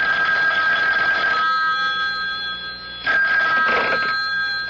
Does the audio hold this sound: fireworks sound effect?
no